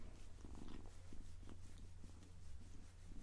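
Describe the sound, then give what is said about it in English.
A ragdoll kitten purrs softly and steadily, a low continuous rumble with a gentle fluttering rhythm, quiet throughout and with no voices over it. “There we go, we got one tiny, tiny little purr for you.”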